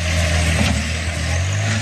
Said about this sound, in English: I tried with a hammer. That wasn't enough. So now here come the tractors. Drive it down.